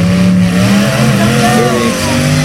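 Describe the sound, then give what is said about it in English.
Loud, well-tuned engines of heavy-duty demolition derby cars in a fair arena rev and drone continuously, their pitch rising and sliding as the throttles open, with a harsh mechanical roar filling the whole moment. “Time to run the last heavy-duty cars. The bodywork pre-match from previous derbies, engines well-tuned, and room to open them up.”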